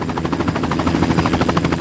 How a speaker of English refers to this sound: Getting off the train, there's a Fox Eye in the Sky TV crew filming something from a helicopter above. It's like I'm in Blade Runner 3.